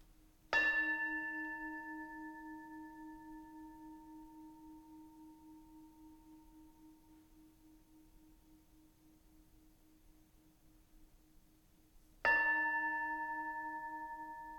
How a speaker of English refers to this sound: As we gather for worship, I invite you now to take a deep breath. Open mind, heart, and body, and allow the ringing of the bell to call you fully into worship.